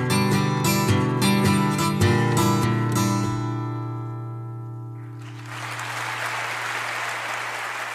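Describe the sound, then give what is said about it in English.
Strummed acoustic chords ring out and fade as a studio album track ends, then a crowd's applause swells in and continues as dense, steady clapping with no voices. The applause is part of that album track; it is not a live album. “There's applause on the. It's not a live album, is it? No, it's just on that track.”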